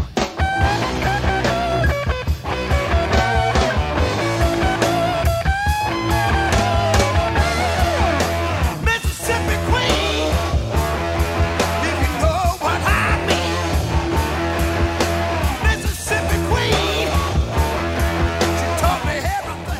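A loud, dense hard rock song plays throughout, with a strained, shouting male vocal over driving distorted electric guitar, thumping bass and steady pounding drums.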